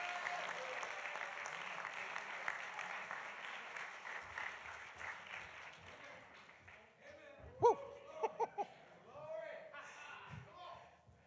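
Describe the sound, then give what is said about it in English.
A church audience breaks into sustained applause as a hand clap of praise to the Lord, a dense wash of clapping that fades after several seconds, followed by a few scattered sharp claps and murmuring voices. “Come on, give the Lord a hand clap of praise tonight.”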